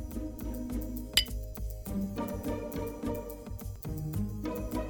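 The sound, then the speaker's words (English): A single bright clink of glasses in a toast rings out briefly near the start, over steady background music that plays throughout. “Cheers to that. Cheers.”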